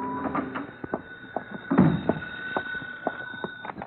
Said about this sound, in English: My phone was ringing when I unlocked the door of my apartment at 10 that night.